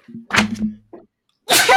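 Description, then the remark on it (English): A person sneezes loudly, a voiced intake followed by a sharp burst, then a second noisy sneeze after a short pause. “Bless you.”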